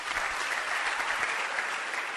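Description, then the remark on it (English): Steady applause from an audience, many hands clapping at once in a dense, continuous wash of sound that holds at an even level for a couple of seconds. “Clap your hands for that.”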